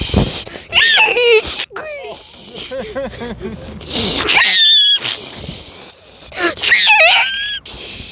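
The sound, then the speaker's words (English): A person's voice imitates seagull cries: a loud, busy run of shrill, squealing squawks with rising and falling pitch, coming in repeated bursts across several seconds. “So many seagulls, you can't even hear the ocean.”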